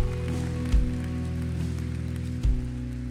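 An audience claps in a steady, dense patter over a sustained low musical drone, with two brief louder thumps breaking through the applause.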